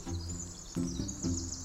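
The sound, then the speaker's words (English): Outdoor spring sounds in Olympic, with birdsong including varied thrush and grouse, and Pacific chorus frogs: high, thin chirps and trills layered over low, throaty pulses that recur roughly every half second, with no voices. “As soon as the clouds part, temperatures begin to warm, the rains become less frequent, the Pacific chorus frogs begin, the bird songs, the varied thrush, the grouse.”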